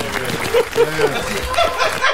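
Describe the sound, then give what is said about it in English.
A small group claps in a quick, scattered burst for a group, fairly loud, with chuckling and a few voices mixed in over the applause. “Hey, let me get a Nori clap for ….”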